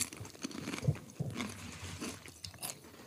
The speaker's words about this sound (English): And these guys are munching away.